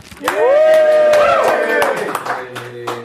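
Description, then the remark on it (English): Scattered hand claps ring out while a voice lets out a long, rising and falling cheer over them, then the clapping thins to a few sharp claps. The applause greets the moderator of a voice acting session. “I am getting applause.”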